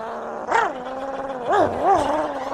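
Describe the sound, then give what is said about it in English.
A collie sheepdog, which leaned on the controls of a tractor in a field next to the motorway, gives a sustained, whining growl, its pitch rising and falling in three short swoops, steady and fairly loud with no one talking. “The overkeen collie leaned on the controls of the tractor and coaxed it into action.”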